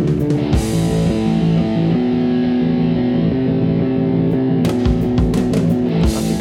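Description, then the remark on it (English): A rock song plays loud and full, with thick sustained guitar chords, a steady low end and drum hits cutting through, especially near the end. No one talks over it. It was recorded in the Bahamas, and the mix sounds dry but carries quite a bit of reverb. “Because it sounds dry, but there's clearly quite a bit of reverb and stuff in there.”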